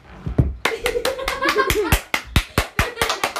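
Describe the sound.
Several people clap their hands in a brisk, uneven burst of sharp claps over a few seconds, with faint voices and a bit of cheering underneath.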